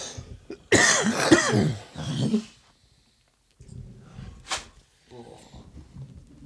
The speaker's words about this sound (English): I was just seeing if I was going to cough after I took that hit. There it is.